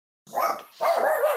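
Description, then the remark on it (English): A dog barks twice in quick succession, fairly loud, the second bark drawn out slightly longer than the first, with no talking over it. “Oh my God, there's a dog.”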